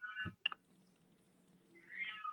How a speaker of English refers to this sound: My cat is going crazy. Can you hear him? Yeah. Yeah. I don't know. He wants to come say hi. He came in. He's not even in the room. He's like two rooms away right now. And he's that's how loud he is.